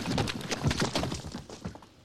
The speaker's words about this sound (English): Yeah, they jump into the canal and the sandworm hits the cement really hard, and I have a little clip of that. It makes a squeal.